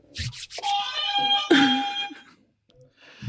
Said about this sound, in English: Oh, God. Let me get my buzzer ready.